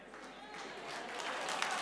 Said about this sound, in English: Why does that get a round of applause?